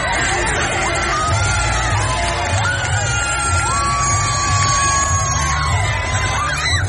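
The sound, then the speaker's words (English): A baseball crowd cheers after a Rumble Ponies win, a steady roar of voices with whoops and high shouts rising above a dense babble, loud and sustained throughout. “I mean, the crowd, there says on the board, Rumble Ponies win.”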